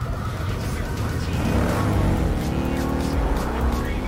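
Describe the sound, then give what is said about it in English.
A motorcycle with a racing engine and a dual exhaust system revs steadily, its throaty exhaust note climbing in pitch over a few seconds, loud and continuous with a slight rasp. “It has a dual exhaust system. And it sounds pretty.”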